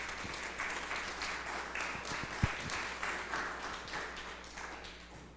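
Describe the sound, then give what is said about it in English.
An audience at a morning church service applauds people watching online who dedicated their lives to the Lord, many hands clapping in a dense, even patter that holds at a moderate level throughout, with one sharper knock standing out midway. “So can we just give them a round of applause this morning?”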